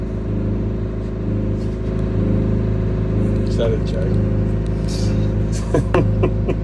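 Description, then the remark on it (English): A loud, buzzing two-stroke motorbike engine drones steadily, revving throughout, while a person talks briefly over the noise; the speaker recorded it while trying to sleep. “Dude, is that fucking way out to the motorbike? Two stroke.”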